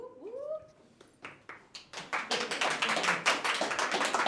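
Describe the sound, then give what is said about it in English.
Audience applause at the show What Did You Hear Me Say? builds from a few scattered claps into dense, steady clapping that carries on loudly to the end, after a brief high-pitched vocal cry at the start. “I got to get an applause sign or something so y'all can do it on cue.”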